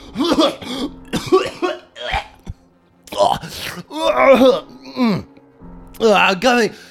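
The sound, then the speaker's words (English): A voice acts out a man's coughing fit from inside a house: several harsh, strained bursts with groaning, moaning sounds between them, fairly loud, with short pauses between the outbursts. “Okay, the entire house shakes, and you hear a coughing fit from inside.”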